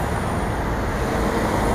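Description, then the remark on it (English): Steady street traffic at a bus stop on the corner of Bancroft in the morning rumbles continuously, a broad low roar of passing vehicles at moderate loudness with no voices. “Standing, waiting for the bus.”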